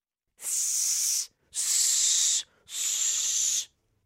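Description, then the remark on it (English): A person makes three long, breathy hisses in a row, each lasting close to a second with short pauses between, loud with no talking. “There's only so many ways you can hiss.”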